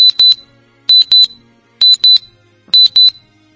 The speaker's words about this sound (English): When you place the phone down, close to the door, you can hear 3 very loud clicks, and then you hear Brahms' watch make this noise.